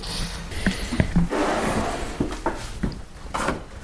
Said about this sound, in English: If I just pull this drawer open, and I'll show you what we've got.